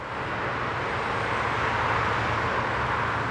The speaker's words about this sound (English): Over 100,000 cars and trucks thunder across here every day.